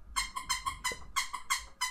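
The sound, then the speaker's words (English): A squeaky toy squeaks rapidly about eight times in a row, each squeal short, high-pitched and fairly loud, with brief gaps between squeezes and no talking over it. “What's that fucking squeaky to?”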